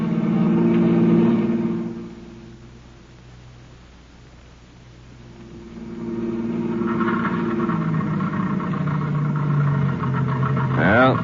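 A car engine running out of gas hums steadily, fades and weakens, then labors back up with uneven revving before a brief rising whine at the end, like a motor struggling and sputtering.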